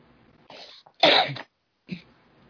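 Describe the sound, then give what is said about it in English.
A single sharp sneeze bursts out, preceded by a quick breathy intake and followed by a short snuffling exhale, with no talking. “Bless you.”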